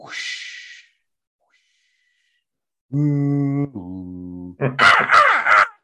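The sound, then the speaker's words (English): A person squawks and cries in a seagull imitation: a breathy hiss, a pause, then two drawn-out harmonic wails and a burst of harsh, raspy calls, loud. “Like a fucking seagull”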